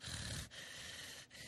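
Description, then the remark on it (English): A voice does exaggerated heavy breathing: loud, raspy, snort-like breaths that run almost continuously, broken by two brief catches, with no talking. “See, gotta give her the heavy breathing.”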